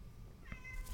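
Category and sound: animal, cat meowing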